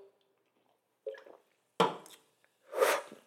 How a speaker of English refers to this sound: So I'm gonna take my sip. I mean, it's light. I'm not drinking nothing too heavy. I'm gonna keep it cute.